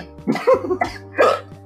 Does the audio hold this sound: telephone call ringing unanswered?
no